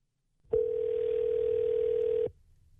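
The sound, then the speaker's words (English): A steady electronic telephone tone sounds once, clear, holding for nearly two seconds before cutting off abruptly, with no voices present, as hosts of New Country 103.1 radio call a phone number. “No, so we're just gonna try to call somebody. We got a phone number, and we're flying in the dark.”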